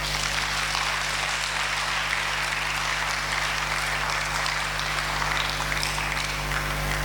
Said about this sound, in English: It's a good time to clap for Jesus.